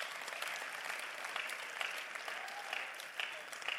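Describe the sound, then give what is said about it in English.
A church audience claps together for the Heralds drama group in dense, steady applause that lasts the full few seconds without pausing, a thick, even wash of many hands at a fairly constant loudness. “Clap for the Heralds.”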